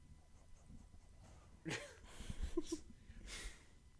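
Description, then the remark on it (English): A dog named Rex breathes right up against the microphone: a few loud, breathy huffs and snuffles with short pauses between them. No one speaks. “It's just his breathing.”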